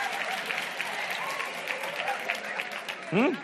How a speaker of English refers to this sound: I can't get no claps from you now. Give me some more claps. Don't stop clapping now.